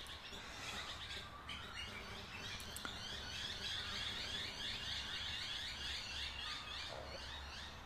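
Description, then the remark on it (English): A dense chorus of birds singing continuously at dawn, around 4:41 in the morning as the sun rises, many overlapping chirps and trills, with a steady low outdoor rumble underneath and no voices. “Listen to those birds. Oh my God, they're on fire too.”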